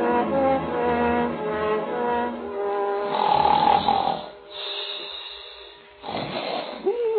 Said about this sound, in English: You there. You, sir. Stop that confounded snoring. Wake up.